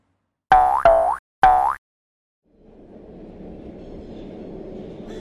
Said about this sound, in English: It's kind of nice riding a train. The subway is cool, but it's interesting to go above ground and watch the countryside go by.